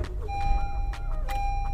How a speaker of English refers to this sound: Air conditioning, you beautiful goddess. Oh my God. It was so hot in this stupid car.